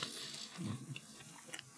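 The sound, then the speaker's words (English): Chewing of a sticky, dense chewy candy bar made with Rice Krispies and chocolate, much like a 100 Grand bar, with soft wet mouth sounds and a few faint crackles, quiet and continuous with no talking. “Not exactly the kind of crunch I was expecting.”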